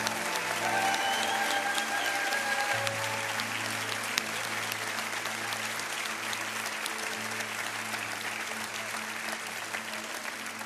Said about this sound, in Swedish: Ska vi ge en varm applåd till alla medlemmar här eller som har varit medlemmar här.